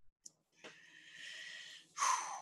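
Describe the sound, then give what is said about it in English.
A long, breathy intake of air followed by a sudden, louder gasp, with no talking around it. “I heard a gasp.”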